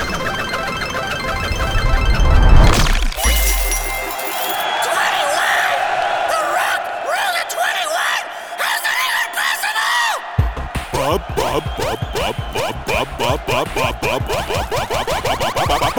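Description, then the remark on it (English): A group of voices cheers and whoops loudly and continuously for a player's turn rolling dice in a game, overlapping shouts and high excited yells filling the whole stretch, with a brief low rumble near the start. “Excuse me, where was all this cheering when it was my turn?”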